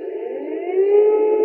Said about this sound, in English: The early sirens wailed in Ukraine's capital once more. But this was no rude awakening. No one had been able to sleep.